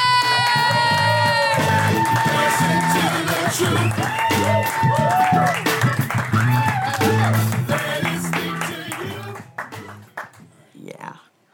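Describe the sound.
An audience at a comedy show claps and cheers loudly for a comic being introduced, with dense rapid applause, whoops and shouting voices layered together, holding steady for several seconds before tapering off into a few scattered claps.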